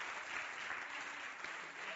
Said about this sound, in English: Round of applause for our volunteers.